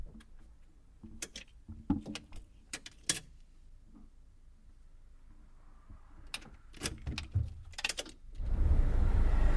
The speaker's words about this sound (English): He closes the hood firmly and gets back inside the truck. He slides the keys into the ignition, but doesn't turn it yet.